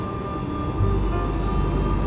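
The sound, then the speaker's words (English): An airplane engine roars steadily with the brakes on, then surges louder and fuller partway through as it throttles up and the brakes are released for takeoff. A constant low rumble runs throughout, with a sustained tonal whine above it. “Put the brakes on, throttle up, release the brakes, and we're off.”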